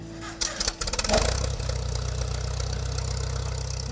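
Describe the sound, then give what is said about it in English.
The engine of a classic Farmall 400 tractor in Southwest Michigan cranks and catches with a few rough bursts, then settles into a steady, low, rhythmic idle that chugs along with no one talking. “This week we're going to journey to Southwest Michigan and we're going to check out a classic Farmall 400.”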